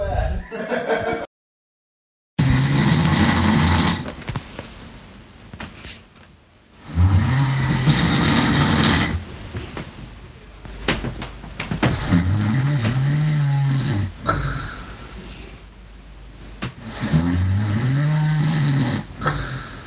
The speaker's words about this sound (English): I recorded audio of you snoring very loud.